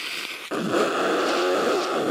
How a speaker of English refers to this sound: Maybe I should blow my nose over here and make sure I look presentable.